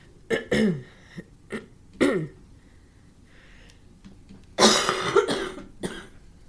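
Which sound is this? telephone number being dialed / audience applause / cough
cough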